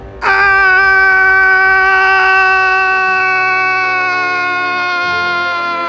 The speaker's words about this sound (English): Scream again so I can listen.